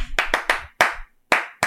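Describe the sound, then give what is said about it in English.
Six sharp hand claps in an uneven rhythm, three quick ones followed by slower, spaced-out claps, each a crisp slap with a short ring. No one speaks. “Clapping cheeks, clapping hands, baby.”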